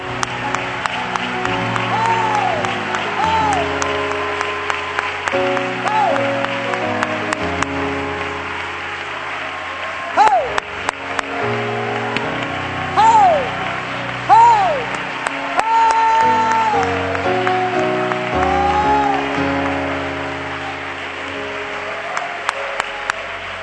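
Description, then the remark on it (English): An audience claps steadily and shouts praise to God for about twenty seconds, with individual raised voices whooping above the dense applause and sustained instrumental chords underneath. “put your Bibles down behind you now and let's clap our hands unto the Lord as a praise offering unto God and shout with a voice of triumph.”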